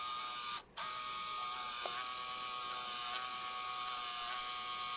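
A Game Boy printer prints out a little hello message, running with a continuous mechanical whir and buzz, pausing briefly near the start before the steady grinding resumes. No one speaks.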